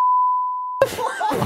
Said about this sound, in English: Beep that for me